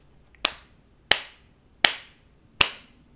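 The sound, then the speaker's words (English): Four sharp, loud hand claps spaced evenly about two-thirds of a second apart, a deliberate slow clap given for Andrew Tate, each crack ringing out briefly over quiet background and no talking. “I gotta give him the slow clap.”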